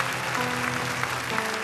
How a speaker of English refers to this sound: Now, and while you're standing, if Jesus has ever met your need, if Jesus has ever come through for you, would you give Jesus the biggest hand clap you've ever given him before in your life?